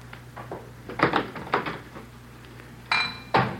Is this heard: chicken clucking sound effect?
no